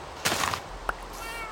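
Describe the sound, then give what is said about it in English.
A single short cat meow, followed a moment later by a brief sharp click against a faint steady background hiss. “Wait, I didn't even save the cat.”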